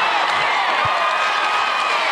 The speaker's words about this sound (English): The crowd quickly started chanting to let her audition.